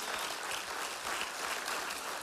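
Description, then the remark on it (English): An audience claps steadily for a couple of seconds, a dense, continuous wash of many hands filling the room at an even, fairly loud level with no voices standing out. “Oh, you ought to clap tonight like you really love Jesus.”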